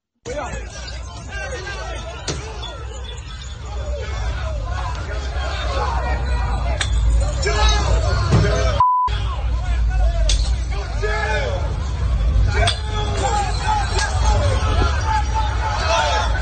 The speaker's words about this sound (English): So a crowd gathers, taunting the cops. They even try to stop the cops from arresting the guy. They are hurling all these obscenities. And then at one point, they even start throwing a glass bottles. Take a listen to some of the mayhem.